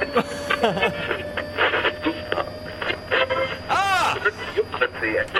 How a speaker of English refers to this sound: Quick, tune the radio in. Let's see what's happening.